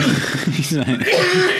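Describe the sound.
A person coughs and clears their throat in a few rough bursts, with voiced, speech-like sounds running through the short stretch.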